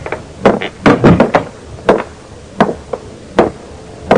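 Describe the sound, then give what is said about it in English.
A door of room 6 opening with a burst of sharp wooden knocks and clunks, about a dozen loud hits in an irregular rhythm, with no voices. “I went on to room 6, opened the door.”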